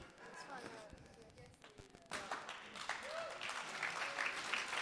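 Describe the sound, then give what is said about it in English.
An audience breaks into applause, scattered at first and then swelling around the midpoint into dense, steady clapping, with some voices mixed into the noise. “Don't clap him.”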